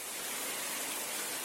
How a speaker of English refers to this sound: Cue the shower.